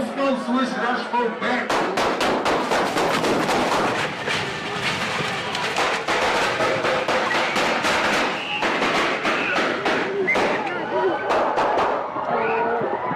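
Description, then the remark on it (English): Rapid, sharp gunshots from a gunfight crack out again and again like firecracker pops at what seems a birthday gathering, irregular bursts running throughout over a loud, chaotic crowd with people shouting. “And then all of a sudden, you hear these, what can only be described by somebody who's never been in a situation like that, as like firecracker pops, like just pop, pop, pop, pop.”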